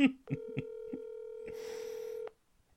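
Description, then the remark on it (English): Phone call tones sound: a steady electronic tone holds for about two seconds, broken by a few short beeps early on, with a hissy noise joining near the end before it cuts off. “Decline the call. I don't know how.”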